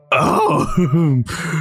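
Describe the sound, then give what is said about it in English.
A loud, rough, growling snore performed by a human voice, one long rattling breath in and a rasping exhale, imitating a big furry monster snoring as loud as thunder while asleep in the straw. “He slept with his belly exposed, and his snoring was as loud as thunder.”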